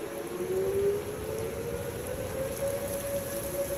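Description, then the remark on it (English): A storm warning siren wails steadily with a slowly rising pitch over constant heavy rain and wind, a dense hiss filling the background throughout. “You hear that one fire up? Yeah, that's sirens. It is. It is the, yeah, it's the storm warning sirens, but I thought it was spooky music.”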